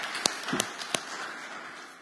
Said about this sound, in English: I'm going to clap because I'm glad.